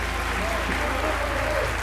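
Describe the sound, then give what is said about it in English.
Raucous crowd applause from the packed gallery of the House in response to a speaker's statement: a dense, steady roar of many hands clapping at once, loud and unbroken throughout, with a murmur of voices mixed into the din. “The crowd breaks into raucous applause at this statement.”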